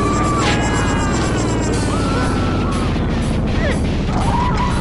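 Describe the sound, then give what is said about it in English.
Loud, continuous noise from the driving video game Carmageddon: a roaring engine drone with dense clattering impacts and crunching car crash sounds, punctuated by wet splattering bursts and rising whine-like tones. “I just wanted to make the point that all the sounds from this game are just screaming and splattering. And car noises.”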